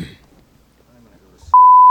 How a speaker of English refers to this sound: Yeah, I'll do a beep anyways for the censor.